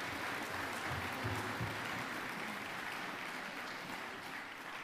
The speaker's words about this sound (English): Give them another round of applause, because that was very good.